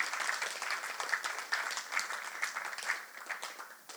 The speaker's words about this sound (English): It's all right to clap.